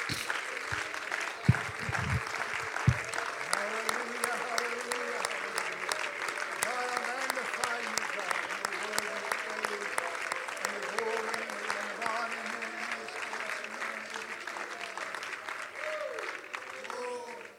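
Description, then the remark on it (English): A seated audience claps their hands to the Lord steadily for over fifteen seconds, a dense, fast patter of many hands with voices murmuring faintly underneath, a few louder thumps near the start. “Clap your hands unto the Lord as you're seated.”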